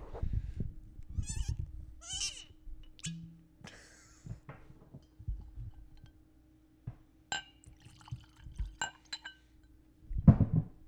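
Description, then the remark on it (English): Several sharp, ringing clinks of glasses knocking together in a toast, scattered over a few seconds amid soft rustling and handling noises and a low steady hum. “I don't know if you'll be able to hear that. Cheers”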